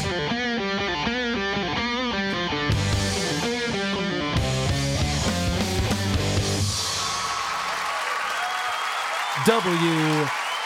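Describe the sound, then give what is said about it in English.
Steady crowd applause swells in after a stretch of processed, distorted voice and music, filling the last few seconds with dense clapping, and a short vocal cry cuts through near the end. “Please clap.”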